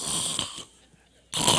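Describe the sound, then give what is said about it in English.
A voice imitates snoring with two loud, raspy, breathy snores separated by a short quiet pause. “And Peter still didn't wake up. He's still snoring.”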